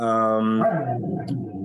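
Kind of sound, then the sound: animal, dog barking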